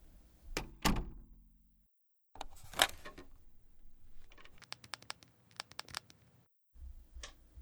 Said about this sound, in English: Please close the door as you leave.